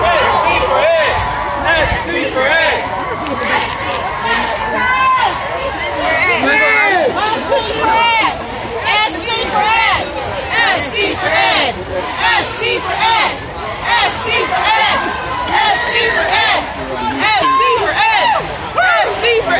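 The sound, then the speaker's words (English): A large crowd of thousands at a teachers' march and rally for better education in Columbia fills the air with constant loud babble, overlapping voices shouting and chattering with no pause, occasional raised calls standing out over the dense hubbub. “The crowd is large, everyone. I mean, this is the largest rally, one of the largest rallies I've seen in Columbia.”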